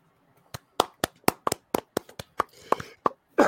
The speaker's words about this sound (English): Thank you for the slow golf clap hands.